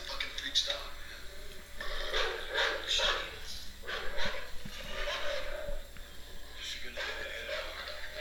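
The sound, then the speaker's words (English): A dog yelps, barks and whimpers in short, high-pitched bursts, with a steady low hum underneath throughout. “Oh no, the dog!”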